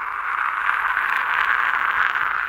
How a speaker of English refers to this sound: That's the whole world applauding for you